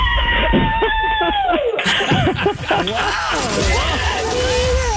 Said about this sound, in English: Who is that yelling in the background? It's all my coworkers. Believe it or not, that's only four people.